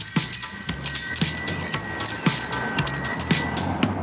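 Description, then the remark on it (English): A bicycle bell rings over and over in quick, rhythmic bursts, bright, with a steady low thumping beat underneath throughout, in a song about riding a bike. “Here's my helmet and my bell.”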